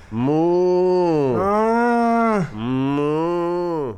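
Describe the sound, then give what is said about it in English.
Three long, loud mooing calls follow one another with barely a pause, deep and drawn-out like a cow's low, voiced by people imitating cattle back and forth. “as he stood there, tepid urine dripping from his face, trading moos with …”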